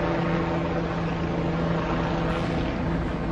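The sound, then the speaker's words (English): Steady, loud rotor drone of helicopters overhead, a continuous engine hum with strong low tonal bands that holds level through the whole stretch, no voices. “More and more helicopters.”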